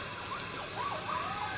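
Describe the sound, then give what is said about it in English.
High-pitched coyote howls, several wavering, sliding cries that rise and fall and overlap one another, with no talking, over a steady background hiss, recorded at 3:30 in the morning on the 4th of May. “Again, wow, they're very high-pitched.”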